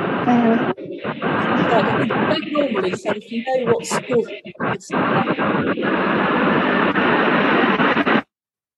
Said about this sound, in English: you've got a bit of interference going on there.